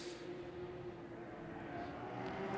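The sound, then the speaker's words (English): A Lamborghini Huracan Super Trofeo race car, number 793, running in the GT3 Pro class, drones steadily on a race track, a constant mid-pitched hum over broad rumbling noise, holding even in loudness without a distinct pass-by. “This is the Lamborghini Huracan Super Trofeo running GT3 Pro.”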